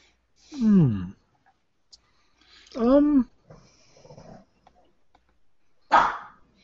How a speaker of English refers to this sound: Hang on, dog. I don't think it's necessary for you to keep guard here anymore.